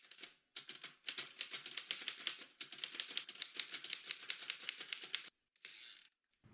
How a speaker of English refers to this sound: I felt sad for the man because whatever it was he was smiling about, whatever it was that he was typing, was disappearing with every stroke of the key.